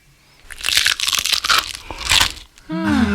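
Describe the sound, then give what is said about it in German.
A crunchy snack bar being bitten, a computer-designed target sound for how the bar should sound, giving about two seconds of loud, bright, crackling crunches in dense bursts, followed by a voice starting to speak at the very end. “So wollen wir, dass der Riegel klingt.”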